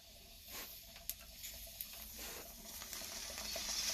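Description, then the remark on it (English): Bong water bubbling in a steady, quiet gurgle during a hit, with a couple of sharp little pops and a rush that builds slightly toward the end. Nobody speaks. “Yeah, let's both crash back a bong rip to end the show here.”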